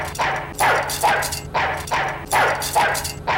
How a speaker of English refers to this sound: So we're going to start things off strong because Ein is super cute and he barks at Faye and it's adorable.